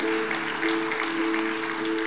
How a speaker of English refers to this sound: Can a few people help me know that this message reached some people today? Could you just clap? If not for God, just at least do it to encourage me.